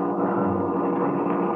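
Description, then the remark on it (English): A car engine hums and rumbles in a steady, continuous drone, low and fairly loud, as the car comes up the road, with no voices over it. “I hear it. Coming up the road toward us.”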